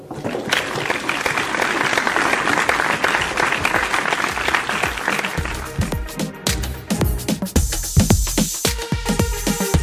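An audience applauds in a dense, steady clatter for about six seconds, then the clapping thins out as music with punchy low beats and bright tones takes over.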